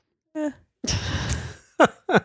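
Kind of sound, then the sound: human body sound, yawn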